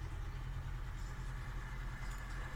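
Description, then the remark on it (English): A boat engine drones steadily as a boat goes past, a deep low rumble holding at an even level throughout, with no voices over it. “Boat going past.”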